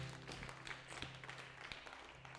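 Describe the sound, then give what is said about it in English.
A church audience at Gospel Fellowship gives God a hand clap of praise after worship, a dense, steady wash of many overlapping claps lasting a few seconds with a low hum underneath. “Let's give God a hand clap of praise for this worship.”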